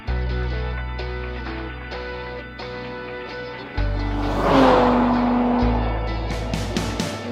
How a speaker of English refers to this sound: The engine is strong with good thrust down low. Peak torque is available from just 1600 RPMs onward. I do wish the engine sounded a little throatier down low, but it does get a little meaner when you wind it up.